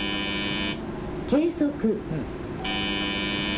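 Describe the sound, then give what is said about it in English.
A loud, steady electronic alarm buzzer from an automated earthquake early warning system sounds a false alarm in its control center; it drones, cuts out for about a second while someone speaks briefly, then resumes at the same harsh, unbroken pitch. “the automated system emits a warning”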